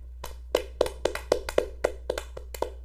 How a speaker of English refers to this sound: Let's have a round for they. For them. Woo! Can you clap? Put the mic down and clap.